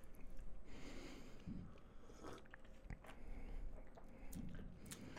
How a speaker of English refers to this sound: Take a sip of that right now while you still have a little bit of the gummy.